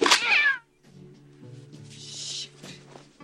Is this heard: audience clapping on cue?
no